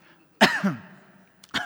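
A single harsh cough bursts out loud, trails off into a rough exhale, then a shorter second cough or throat clearing follows a second later.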